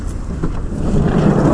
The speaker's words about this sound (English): Lots of traffic, lots of activity, perfect. Ooh, and we got a seagull and some pigeons and carts and kids.